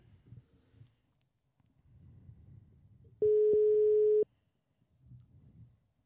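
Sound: telephone ringing tone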